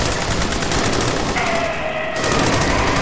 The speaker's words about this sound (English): Strange, unnatural shrieks answered this new threat, grew brighter and more frequent, revealing the forms of a tactical team pursuing something onward through the caverns with relentless gunfire.